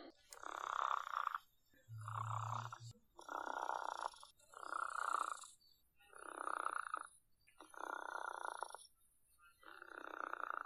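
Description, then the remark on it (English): A chicken purrs in a steady series of about eight soft, rolling trills, each lasting roughly a second with brief pauses between, even in loudness and with no talking. “Do we have some chicken purring sounds? Oh, we do!”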